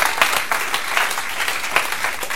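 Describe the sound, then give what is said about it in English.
A crowd gives God a round of applause, clapping steadily and loudly, a dense wash of many hands with a few sharper claps standing out, continuing throughout without any voices. “Give God a round of applause right now if he has completely transformed your life.”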